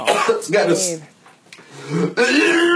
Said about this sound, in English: He's just cleaning a shower drain. I can hear him retching.